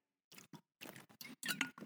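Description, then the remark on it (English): Sips of water: a quick series of soft, wet mouth and swallowing noises, about six short bursts over two seconds, with no talking. “I'm going to take another sip of water because I'm going to cough again.”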